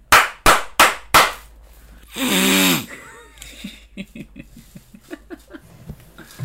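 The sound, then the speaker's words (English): Four sharp, loud slaps in quick, even succession, followed by a harsh, noisy vocal burst and then someone talking. “So, if I read that correctly, it is 4 slaps in a congested allergy season.”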